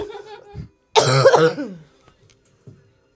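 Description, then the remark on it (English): A single loud, harsh cough bursts out, with a rough throaty tail, preceded by a soft snuffling breath and followed by quiet small noises. “Instead of snorting, I'm coughing.”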